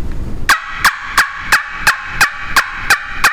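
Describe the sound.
A loud, sharp turkey yelp sequence from a turkey call, about nine evenly spaced, ringing notes in quick rhythm, piercing with no talking; the caller separates each note, pulling the air back with the throat.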